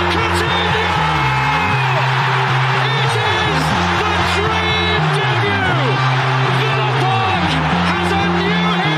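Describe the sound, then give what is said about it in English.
A stadium crowd erupts in sustained cheering after a goal by Ramsey, a dense, loud roar of many voices with shouts and whoops rising and falling over it without a break. “That's a big clap, mate.”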